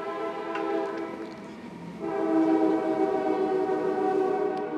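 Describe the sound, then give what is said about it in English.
A train horn blares in long sustained chords, swelling louder midway as the train rumbles past, with no voices present. “This morning, none passed in 8:30, and so far we've had one at 11, so I'd like the train folks to get on a schedule, if they don't mind.”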